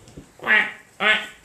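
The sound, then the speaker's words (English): Two loud, nasal quacks like a duck's, the first drawn out slightly longer than the second, separated by a short pause with no talking. “Did you give birth to a duck?”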